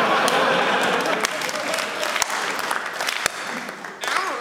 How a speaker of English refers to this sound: doing a slow hand clap.